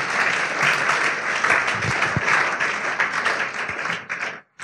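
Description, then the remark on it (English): A church audience claps steadily, a dense wash of many hands applauding at once, loud and sustained for several seconds before stopping abruptly. “You are not clapping because you don't even believe in what I'm telling you.”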